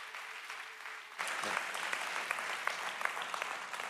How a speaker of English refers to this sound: Hey, keep clapping until he comes.